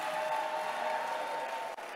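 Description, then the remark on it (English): A church audience claps and shouts together in a steady, dense wash of applause and cheering that lasts a couple of seconds without pause. “I can't hear you clapping and shouting.”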